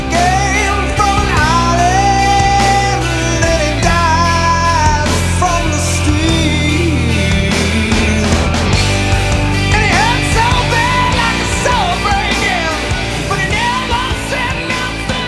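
A slow, heavy grunge rock song plays loud and full, with thick distorted guitars, steady drums and a wailing sung vocal line running throughout.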